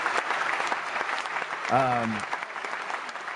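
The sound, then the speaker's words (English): Steady, dense applause fills the whole stretch, a continuous patter of many hands clapping, with a short voiced call rising over it about halfway through. “We appreciate your fake internet applause, though.”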